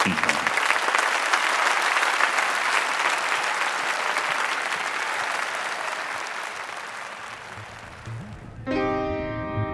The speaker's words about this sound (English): Can you taste their salt as they cascade across a tired, trembling body, trying to hold its heart so as to not break the silence until that first brave clap lets forth a torrent of other hands?